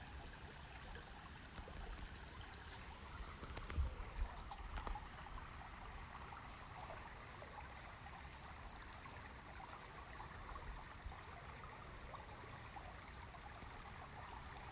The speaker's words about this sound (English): Sounds of the water flowing.